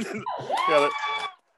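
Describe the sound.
An audience in the background cheers on a woman in a short burst, led by a loud, high, rising whoop over a wash of excited crowd voices, lasting just over a second before cutting off.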